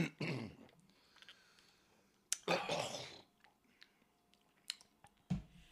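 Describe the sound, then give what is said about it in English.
A person coughs and clears their throat in a few separate bursts, fairly loud, with quiet pauses between them and a short final sputter near the end. “Cough, cough, cough.”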